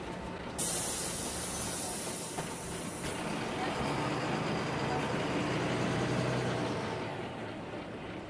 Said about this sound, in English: Well, this is my bus.